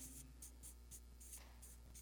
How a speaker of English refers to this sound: I'm going to draw a cross up here on this piece of paper. And on one side, I'm going to write sin.